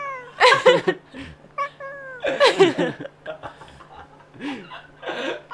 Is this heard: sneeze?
no